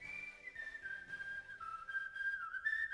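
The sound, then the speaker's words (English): A person whistles a sustained, wavering tune with sliding pitch, steady, carrying on without pause for the whole stretch with no talking. “I don't want to interrupt the whistle.”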